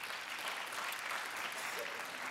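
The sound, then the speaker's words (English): A crowd claps steadily, a dense wash of many hands applauding at an even level throughout, moderately loud, with no voices standing out. “Yeah, you can applaud for that.”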